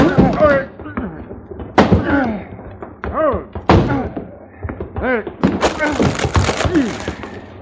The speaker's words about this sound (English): Someone's banging on that closet door